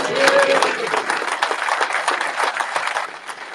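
Steady applause from an audience, a dense patter of many hands clapping at an even loudness for a few seconds, with a brief whistle-like tone near the start before fading slightly at the end.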